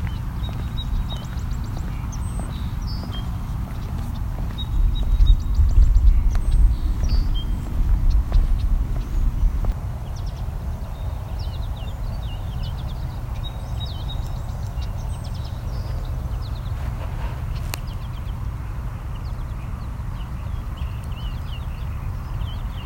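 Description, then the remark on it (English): European starlings squawk and chatter faintly, scattered short harsh calls over a steady low outdoor rumble, with some heavier thumping early on. “You can also hear some European starlings as well. There's our starlings squawking.”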